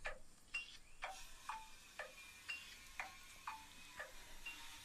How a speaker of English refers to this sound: Here is the clock, the Trumpton clock, telling the time steadily, sensibly, never too quickly, never too slowly.